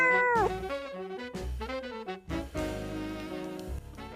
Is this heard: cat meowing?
yes